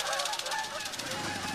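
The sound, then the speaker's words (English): A flock of wild geese returning in spring honks in the skies over Pervernatuk, a dense chorus of overlapping nasal calls that carries steadily, with no pauses between them. “The wild geese returning to the skies of Pervernatuk beckon us to leave.”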